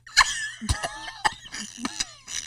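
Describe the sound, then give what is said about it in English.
A sputtering fit of coughing and choking: five or six harsh, irregular bursts with strained, raspy voiced gasps between them, moderately loud, with no talking. “You ain't gonna have me choking over here today.”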